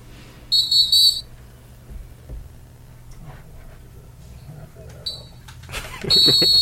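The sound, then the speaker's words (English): A cheap plastic Dollar Tree whistle blows in shrill, short, loud bursts (one near the start, a brief chirp midway, and a longer blast at the end) over a low background hum. “This is the Dollar Tree whistle.”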